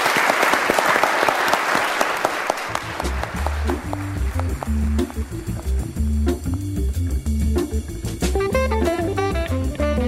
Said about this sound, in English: Round of applause for our jury for really